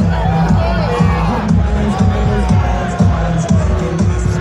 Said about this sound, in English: Oh. Crowd's getting on Harbaugh.